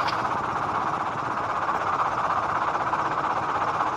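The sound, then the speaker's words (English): An old helicopter's engine and rotor roar steadily and loudly throughout, a dense, unbroken mechanical drone with a gritty low-end flutter and no voices. “I want to know what chopper they're in. Got a distinctive sound to it.”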